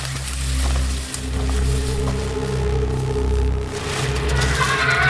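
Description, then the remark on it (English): A steady, low-pitched buzzing drone of insects fills the whole stretch, thick with layered harmonics and gently wavering in loudness, with a faint higher whine rising near the end. “Shh! What is it? Buzzing. We're close.”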